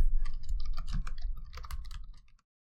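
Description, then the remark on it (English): Rapid, irregular clatter of keys being typed on a computer keyboard while typing up a game idea, moderately loud over a low background rumble, stopping abruptly after a couple of seconds. “Well, I'm going to start typing, and if you think of anything, feel free to speak up.”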